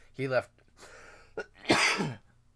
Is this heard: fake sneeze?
yes